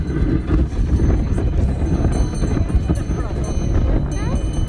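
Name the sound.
horse hooves trotting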